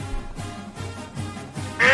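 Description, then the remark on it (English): A duck quack sound effect for the advice duck segment: several loud nasal quacks in a steady repeating rhythm, ending in a sudden bright burst of sound. “So now, while you guys think that this segment is for the advice duck, it's the announcement.”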